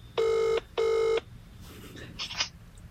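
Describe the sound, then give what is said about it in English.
A phone line ringing on an outgoing call, giving one double burst of buzzy electronic ringback tone, followed by faint muffled shuffling and line noise. “Okay, it's ringing.”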